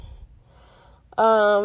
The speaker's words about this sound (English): Why am I breathing so hard?